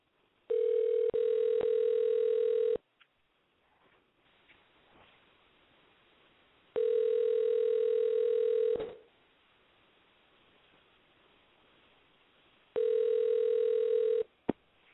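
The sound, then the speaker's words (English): A telephone line tone plays while a call is placed: three steady electronic hums, each about two seconds long, separated by roughly four seconds of near-silence, clear and with no talking. “And now we're getting Josh Tillman on the line to wrap up all the other phone calls that were piling in.”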